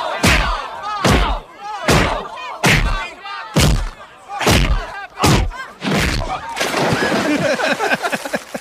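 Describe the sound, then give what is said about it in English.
A rapid series of loud, heavy punch impacts lands in a steady rhythm in a film fight in which Adam Sandler's character hits Bob Barker with a rabbit punch and then a right cross into a water hazard, followed by a big splash into the water and a sustained churning wash. “But, I mean, there's a lot of punches in this fight, but it's going to be a combination of his rabbit punch, and then he does a right cross into the water hazard.”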